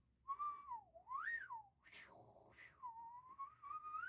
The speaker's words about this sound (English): I'm not going to disclose who I wolf whistled at, but I did wolf whistle. Can I give you guys a hint of my wolf whistle?